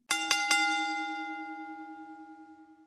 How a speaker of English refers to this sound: Yeah, let's ring that bell. Let's get in the ring and let's talk some wrestling.